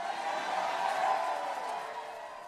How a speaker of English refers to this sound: There's both Larry Elder and there's also all the people booing.